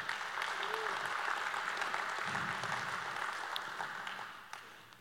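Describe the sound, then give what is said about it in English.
A crowd applauds with steady, dense clapping that holds for several seconds before thinning out, with a few sharp individual claps near the end and a faint murmur of voices underneath. “Come on, if one claps, we all clap.”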